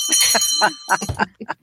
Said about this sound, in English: Yay, and there's a bell ringing. Yay. Somebody's getting their wings.